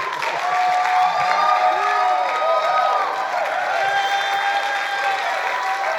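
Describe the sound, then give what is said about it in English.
A church audience at Bethel Atlanta applauds speaker Blake Healy steadily for several seconds, dense clapping mixed with cheers and a few high whoops rising above the roar, sustained at an even loudness throughout. “A great big clap for Blake Healy.”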